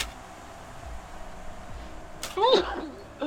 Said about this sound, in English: Bless you. Bless you? Thank you. This was an interesting sneeze. It's like a piece of performance art.